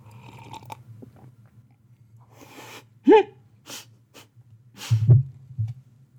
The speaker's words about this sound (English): I love a good slurp to be obnoxious.